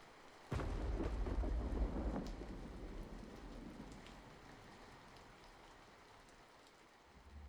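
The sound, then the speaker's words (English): Steady rain hisses throughout, broken early by a sudden, loud crack of thunder that rolls into a deep rumble and slowly fades back under the downpour. No voices. “turns to the door, heading back out into the storm that hangs over Piltover.”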